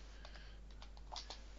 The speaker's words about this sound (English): If you can hear keys, by the way, I'm just because I'm typing in a comment in to share it over.